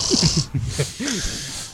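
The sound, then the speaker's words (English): A man, someone's father, snores loudly and roughly in the background, with guttural, pig-like snorts and rattling breaths coming in quick pulses over a steady background hiss; no one speaks. “Why does it sound like a pig snoring in the background?”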